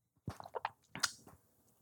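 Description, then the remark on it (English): Wet slurping and gulping as someone takes a first sip of water from an awkward container: a cluster of squishy sips, a sharper splash-like gulp, then a brief fading trickle, with no talking. “How do people drink out of this?”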